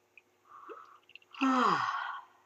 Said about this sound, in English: And if you can, open your mouth as wide as possible, lowering your lower jaw down towards your chest, and see if you can induce a yawn.